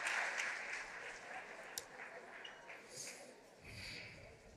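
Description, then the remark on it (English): A church audience claps steadily, giving the Lord a hand clap of praise, in a dense wash of applause, with voices calling out over it, swelling slightly near the end. “Now put your hands together and give the Lord a hand clap of praise.”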